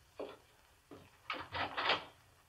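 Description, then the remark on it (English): A door opens and closes: two short wooden knocks, then a quick run of rattling clunks as it swings and shuts, with no voices. “Then he went to the door.”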